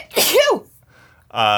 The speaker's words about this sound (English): Bless me. Bless you indeed